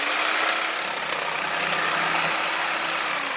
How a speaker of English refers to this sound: So drilling of a different kind. Oh yeah, I thought that was going to be sex noises, and I initially was really like, wow.